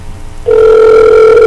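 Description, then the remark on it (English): After a brief quiet moment, a loud, steady ringback tone starts and holds unbroken to the end, the ringing an outgoing phone call makes while waiting for someone to answer. No one speaks. “Hey, let's call my old cell phone number.”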